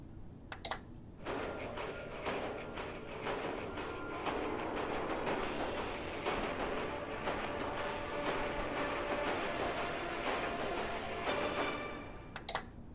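Movie storm sound effects of thundersnow from a film about storm chasers: a loud, steady roar with dense crackling and rapid clattering pulses that cuts in abruptly after a second and stops just as suddenly near the end.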